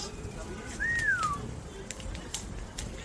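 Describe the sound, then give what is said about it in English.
A single short meow from a cat in a video being played, its pitch sliding up and then falling away, heard faintly over a steady background hiss with scattered small clicks. “Oh, that looks delicious. Cats.”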